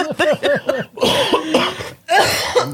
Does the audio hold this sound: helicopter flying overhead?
no